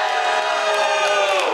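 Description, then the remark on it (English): A live audience yells and cheers together to vote for Ship in a Bottle as number two, one sustained roar of many voices blending into a loud, dense wash of shouting that holds steady for a second or two. “Everybody who thinks Ship in a Bottle is number two, let me hear it.”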